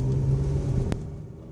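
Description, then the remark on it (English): A steady, low engine rumble fills the cabin of a moving car, with a single sharp click partway through and the drone easing slightly afterward. No one speaks. “This is what it's like to be in a car with Video Vamp.”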